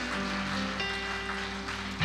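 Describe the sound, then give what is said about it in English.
A church audience claps their hands in praise in a steady, dense wash of applause, with sustained organ-like tones running underneath throughout. “Oh, clap your hands and praise him for what he's going to do.”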